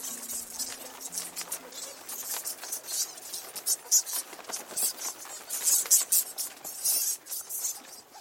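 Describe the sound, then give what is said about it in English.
A dense swarm of disturbed bats streams out overhead, a constant rapid flutter of wings with soft, irregular pattering and high, hissy bursts swelling and fading throughout, with a faint low hum at the start. “And because we've run in and disturbed them, they've all started flying out overhead. I can feel like wings flapping really, really close to me.”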